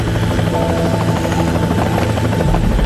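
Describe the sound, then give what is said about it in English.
A helicopter of Jack Bauer's, in a Calorie Mate advertisement set in the streets of Japan, roars steadily overhead, its rotor thumping in a dense, continuous drone that stays loud for the whole stretch with no voices. “And then all of a sudden, out of nowhere, Jack Bauer's helicopters.”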